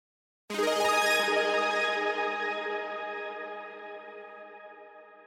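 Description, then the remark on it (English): A bright synth arpeggiator run starts abruptly, running up multiple octaves of a chord, its quick notes blurring together in heavy added echo and reverb, then gradually fades into a long shimmering tail. No voices are present. “These quick arpeggiator runs are a great way to add excitement at certain points in your track, like at the start of a verse or chorus.”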